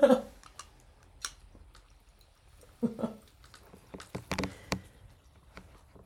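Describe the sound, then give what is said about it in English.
Fish tank water bubbling: irregular, sparse gurgling pops and clicks, some in quick clusters, moderately loud over a quiet background with no talking. “That's our fish tank. That's how bubbling was.”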